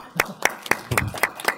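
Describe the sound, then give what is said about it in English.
A short burst of audience applause: crisp, evenly spaced claps, about six in under two seconds, moderately loud, with a faint murmur of voices underneath. “My wife deserves the applause.”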